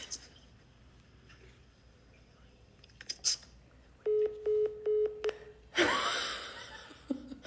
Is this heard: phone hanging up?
yes